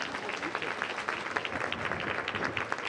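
An audience claps steadily for a few seconds, a dense, even patter of many hands with crisp individual claps popping out of the wash at a moderate level.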